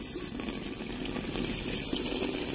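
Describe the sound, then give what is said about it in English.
Steady running water pours from a tap in a new house, a continuous broad splashing hiss that holds an even level for the whole moment, with no voices. “water in my own house? This is like a dream.”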